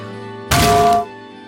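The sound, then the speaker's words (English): A voice imitates a frying-pan weapon from a video game being swung and hitting enemies, a single loud, noisy burst lasting about half a second, carrying a faint ringing tone before it cuts off abruptly. “And so the weapon that you unlock for doing that quest is a literal frying pan, and when you swing it about, it goes.”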